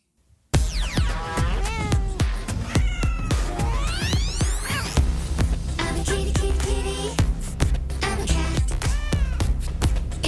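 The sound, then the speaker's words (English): Repeated cat meows, rising and falling in pitch, sung over a thumping electronic beat in a quirky upbeat song that starts abruptly after a brief silence and stays loud throughout. “The first track we're gonna listen to here is a track called ….”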